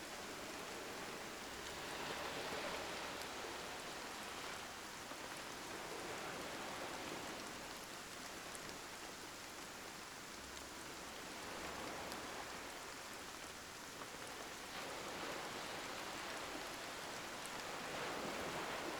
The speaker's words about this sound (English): You close your eyes, and before long, the hypnotic sound of the rain and the soothing sound of the waves lull you to sleep.